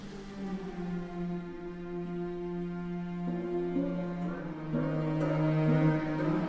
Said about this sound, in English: You're hearing an excerpt of his first piece of organic music, written in 1998, his Water Concerto for Water Percussion and Orchestra